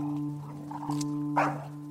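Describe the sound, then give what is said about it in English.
Two large pit bulls, one with a collar, bark at a walker on a road in a national forest: a short, sharp bark over a steady low droning hum, with a fainter yelp just before it; no one speaks. “I just wanted a nice walk through the National Forest, and I come across two pissed-off pits.”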